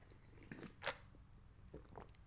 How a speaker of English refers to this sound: Sip a coffee.